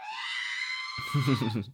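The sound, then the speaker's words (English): Someone vocally imitates R2-D2's shrill death scream from the video game Lego Star Wars, a strained, buzzy wail held for about a second, with a voice then talking over its fading end. “That's when you kill R2-D2 in Lego Star Wars.”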